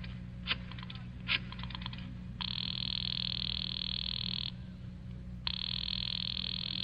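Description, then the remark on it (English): A few quick clicks, then two long buzzing rings of a telephone heard down the line as someone places a call, each lasting about two seconds with a short gap between, over a low steady hum. “I decided to phone him.”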